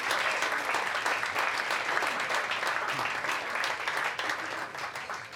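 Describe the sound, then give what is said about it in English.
Steady, loud applause from an audience welcoming the first act, a dense crackle of many hands clapping at once that holds for several seconds with no voices standing out. “Go crazy for your first act”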